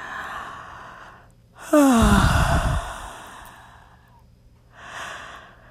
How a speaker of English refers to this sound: Nice big yawn.